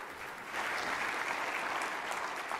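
An audience breaks into sustained applause, many hands clapping in a dense, steady wash that swells after a brief moment and stays loud throughout, with no talking.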